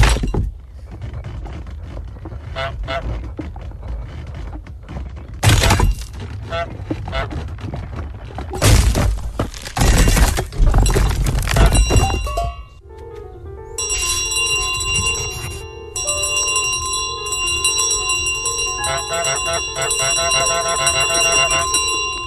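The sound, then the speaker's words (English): Loud crashing and splintering impacts from a video game as a goose tears apart a model church in a model of the town. They give way to a long stretch of clanging tones from the church model's shiny bell, ringing on with bright, sustained overtones. “It just waddles its way to the model of the town and completely fucking tears the church apart.”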